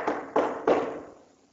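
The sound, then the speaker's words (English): Three firm knocks on a door in an even rhythm, each one sharp with a short resonant ring that fades away after the last knock. No voices. “So you go next door to your friend's house. And you knock.”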